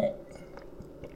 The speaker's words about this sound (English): Let me just get a quick sip of Dr. Pepper.